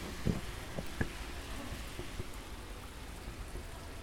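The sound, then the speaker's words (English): Heavy rain pours steadily on a city road outside a New York coffee shop under the train tracks. It makes a dense, even hiss broken by a few sharp splashes or drips in the first second, with no voices. “Heavy rain. I'm standing outside the coffee shop on the road.”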